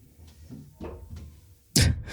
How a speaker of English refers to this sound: I hope everybody can hear the thumping around upstairs. Yeah, I think it's the baby that's crying, and then the three-year-old sounds like she's running around trying to figure out what to do about it.